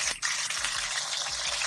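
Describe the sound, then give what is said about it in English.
Water runs steadily from a tap, a continuous hiss and splash with no pauses and no voices. “So who got water going?”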